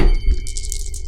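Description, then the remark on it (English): Several dice clatter and rattle together in a quick burst of bright clicking as they are rolled, with a low thud at the start and no voices. “Dalton, will you roll for me?”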